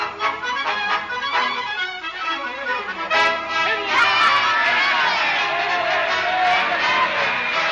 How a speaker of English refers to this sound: What are they yelling about, Mr. Clancy? Haven't you ever been to a political rally before? They'll yell at anything.